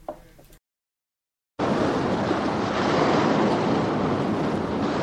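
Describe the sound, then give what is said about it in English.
After a brief sound and a second of silence, a loud, steady roar of ocean surf and wind takes over and continues without pause, broad, with no voices. “We see the ocean, we figure we're home.”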